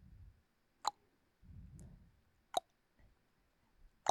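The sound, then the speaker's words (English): Water drips from a leak in three sharp, evenly spaced plops about a second and a half apart, each with a bright ringing tone, over a faint low rumble. “And it's just, that's just the tick of death.”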